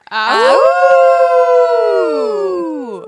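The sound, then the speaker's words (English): People howl like wolves, several voices rising together into one long, loud howl that holds steady for a few seconds and then slowly slides downward and fades. “We howled.”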